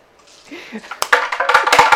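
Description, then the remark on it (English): Dice clatter down through a hard dice tower in a quick run of sharp plastic clicks and rattles, fairly loud, after a brief quiet murmur at the start. “Do you need the dice tower?”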